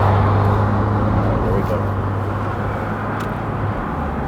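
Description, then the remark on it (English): A steady rumble of a car driving on a road and merging into traffic, with constant tire and engine noise and a low droning hum that holds even throughout. “It's merging with traffic, so my attention is divided.”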